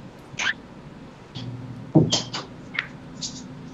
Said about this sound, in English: That's the pump to my air conditioner. It's dying, I think. I don't know. It's getting louder and louder every day.